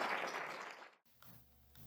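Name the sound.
audience applause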